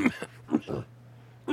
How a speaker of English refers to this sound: Wow. Are you dying today? No, I'm just. Is this cold air? Is it drying you out? It's just weird. I don't know why I'm coughing so much here.